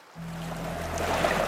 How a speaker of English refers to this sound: Amid the splashing water, a giant mass emerged from the lake.